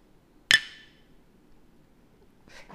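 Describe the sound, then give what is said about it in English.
A single bright clink of glasses touching in a toast among women on a girls' trip vacation in 2023, ringing briefly before fading, with faint murmuring voices starting up near the end. “Well, we'll cheers to that.”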